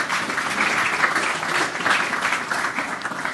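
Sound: audience applause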